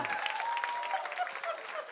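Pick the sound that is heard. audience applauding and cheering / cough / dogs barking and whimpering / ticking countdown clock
audience applauding and cheering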